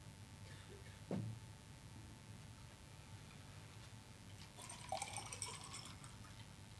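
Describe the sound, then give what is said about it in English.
A clink near the start, then a few seconds of water splashing and trickling into a glass as a glass of water is poured, quiet, with a low steady hum underneath and no one talking. “Let's get some water, sorry.”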